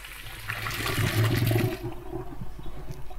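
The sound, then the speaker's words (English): Water rushes and gurgles as pasta cooking water is poured from a pot through a colander into a sink, loud for about two seconds before tapering off into trickling and dripping. “So the rest can go in the sink through the colander.”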